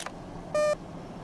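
A single short electronic beep, a steady tone lasting about a quarter second, loud against a quiet background hiss with no talking.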